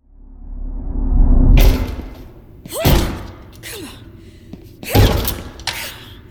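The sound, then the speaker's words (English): Heavy, irregular thuds against a classroom door that won't budge, three main blows a second or two apart, with strained breaths and grunts between the impacts. “The door isn't going to open,”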